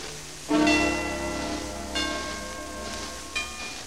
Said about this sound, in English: Even the little bells are struck like this. And the chimes.